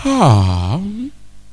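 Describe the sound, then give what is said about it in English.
A male preacher imitates a long, loud yawn, pitch sliding down into a low drawn-out groan, then rising again before trailing off into quiet. “You yawn. And you yawn.”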